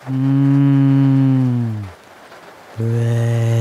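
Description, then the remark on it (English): A cow moos twice, loud: a long, low drawn-out bellow lasting nearly two seconds, a brief pause, then a second deep moo begins. “Did that cow say moo or brains?”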